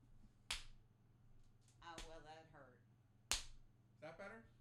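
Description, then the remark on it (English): Two sharp, loud slaps of a hand on someone's buttocks, a few seconds apart, each followed by brief vocal reactions over a low background hum. “She let me slap her ass, folks.”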